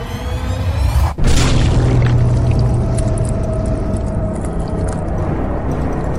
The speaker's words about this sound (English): There's a crunch and a squelch and a splattering of blood as this tiefling vanishes between the palms of this giant.